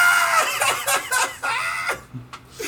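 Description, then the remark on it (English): A person lets out a loud, strained heroic war cry while running in, a high-pitched yelling scream broken into several rough bursts that crackle and waver before trailing off into a few shorter yelps. “It's a literal war cry.”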